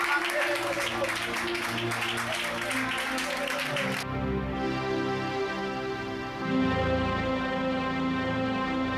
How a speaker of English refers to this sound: Clap your hands, let's pray.